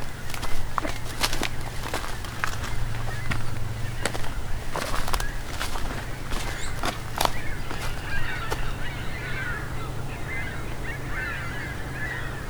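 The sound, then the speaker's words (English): A flock of ring-billed gulls calls as it goes by overhead, a loose chorus of squealing cries that builds toward the end, while footsteps crunch over a low steady rumble. “A whole flock of ring-billed gulls going by.”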